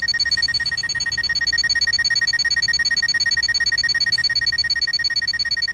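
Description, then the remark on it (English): A countdown timer alarm on a HIMS product goes off with a continuous, rapidly trilling high-pitched electronic ring, steady in loudness for several seconds with no one talking. “We have less than 10 seconds to go. And we should hear a sound.”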